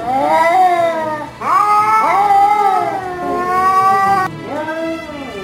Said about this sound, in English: Do you sound more like a wet cat?